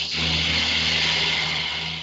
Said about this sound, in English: Somebody just had an airplane go by. Yeah, okay. Sorry about that. I don't know what just drove by, but... yeah, it sounded like an airplane.